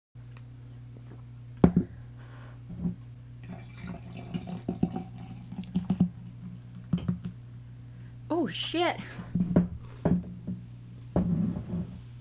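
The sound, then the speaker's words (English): A frothy, foamy drink is poured too much and too fast into a glass with glugging, splashing bursts and a few sharp clinks over a steady low hum. It bubbles up over the top of the glass, and a voice briefly exclaims as it spills. “I was just pouring myself another glass and I totally party fouled.”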